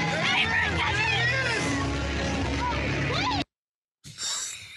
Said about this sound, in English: So these kids are out here, you know, and this is what they do at the games. They yell for the players.